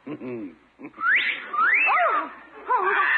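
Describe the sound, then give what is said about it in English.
A parrot on a porch gives loud, swooping wolf whistles at a woman, sharp rising notes followed by falling glides, repeated in a few phrases after a brief burst of low chattering. “He's whistling at the gal.”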